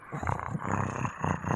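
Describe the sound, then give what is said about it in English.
A person imitates the growl of a huge dire wolf, a low, rough, rumbling snarl held for over a second with a few surging pulses, fairly loud. “You turn toward the door, and what you see standing there is a huge dire wolf and almost looks like a dire bear.”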